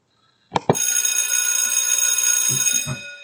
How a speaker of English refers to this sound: We hear that bell. That means that we are back and be ready to chat with you from the Word of God.